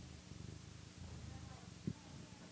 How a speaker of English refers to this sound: She's actually holding the microphone to Stripey's face. Is he purring? He is.